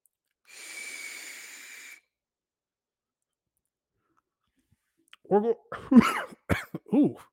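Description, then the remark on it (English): A steady, airy hiss lasting about a second and a half from a long pull on a vape, with a sip of coffee, followed after a pause by a burst of raspy, voiced coughs and throat noises. “I'm going to sip my coffee, hit my vape. Y'all going to hear all this.”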